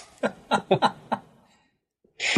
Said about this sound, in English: My cat just almost sneezed himself to death.